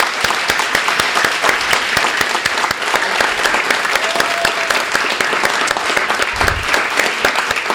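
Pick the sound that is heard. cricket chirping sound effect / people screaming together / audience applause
audience applause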